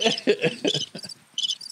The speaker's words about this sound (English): Yes, you got the crickets on that one.